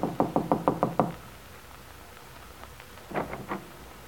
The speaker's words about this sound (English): Getting out, she walks to the door of Bungalow B and knocks.